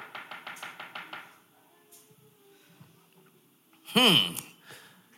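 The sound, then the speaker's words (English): A quick, even series of about seven sharp knocks on a door, followed after a pause by a brief, loud vocal sound. “And one day, he hears a knock at the door.”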